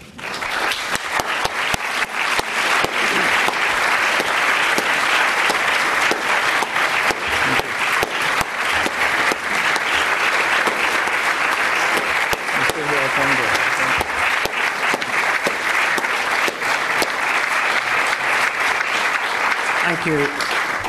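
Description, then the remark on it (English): A large audience applauds steadily at the end of a speech by a speaker addressed as Eminency. A dense, loud wash of many hands clapping holds for about twenty seconds, with faint voices occasionally surfacing beneath it. “They'll have a chance to applaud at the end as well.”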